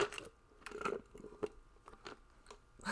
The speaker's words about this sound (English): That was sipping Sprite from a Wendy's cup.